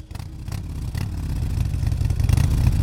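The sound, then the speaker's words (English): A Harley Davidson motorcycle engine rumbles with a deep, throaty growl, revving and building steadily louder over a few seconds, with no voices. “As Angela prepares to ride off into the sunset, we turned our attention to Harley Davidson, the great maker of motorbikes.”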